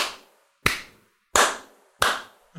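A slow, deliberate soul clap: four loud, sharp claps spaced about two-thirds of a second apart, each ringing out briefly, with no talking.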